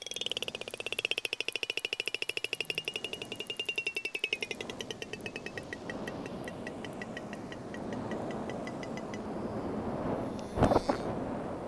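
A fast, steady train of sharp echolocation clicks, the rapid buzz-like pulses made when closing within about a body length of a target while foraging, runs for several seconds over a faint high whistle-like tone, then thins out into a hissy background, with a brief loud burst near the end.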